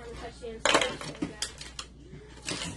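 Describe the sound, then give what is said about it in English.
Metal utensils clatter and clink as someone rummages through a drawer of cutlery for kitchen shears, several sharp rattles in quick bursts, fairly loud, with faint background murmur. “Grab those scissors for me. The cutlery, the kitchen shears, please.”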